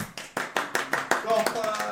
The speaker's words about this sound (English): Golf clap so we don't blow out the mic.